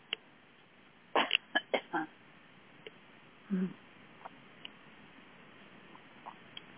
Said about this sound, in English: I'm going to have to cough, and I apologize.